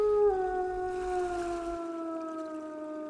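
A dog lets out one long, sustained howl under a full moon, with a slowly falling pitch, fairly loud and clear, holding steady for about three seconds with no talking.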